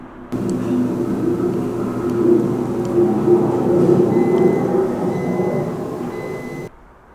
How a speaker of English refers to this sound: Yep, that is a plow, a PennDOT, Pennsylvania Department of Transport, because we are in a snow event here.